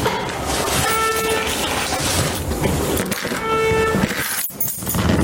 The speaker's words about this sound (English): Do you have keys in your pocket? Yes. Can you turn off your fucking alarm, you idiot? You take them out first.